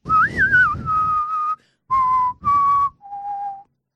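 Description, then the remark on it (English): A whistled Western movie sound effect, called a John Wayne: a wavering opening note sliding down into a held tone, then three more sustained notes stepping lower after a pause, with a breathy rasp underneath and no talking. “A button on it, you push it and it makes the sound effect.”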